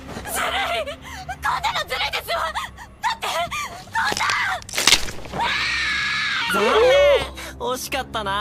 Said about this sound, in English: Give the voice actress a raise. Holy crap. How do you scream like that? Just how do you scream like that, son?